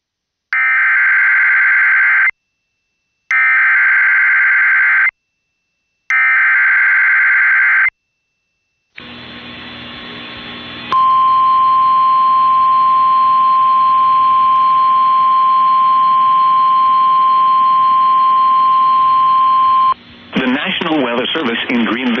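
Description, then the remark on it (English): Emergency alert tones: three harsh, buzzing data bursts with short gaps, then a loud, steady single-pitch tone held for about nine seconds before a voice begins a severe thunderstorm warning for northwestern Cabarrus County and other counties in the Piedmont of North Carolina. “Issued a severe thunderstorm warning for northwestern Cabarrus County in the Piedmont of North Carolina, southeastern Catawba County in the Piedmont of North Carolina, eastern Lincoln County in the Piedmont of North Carolina”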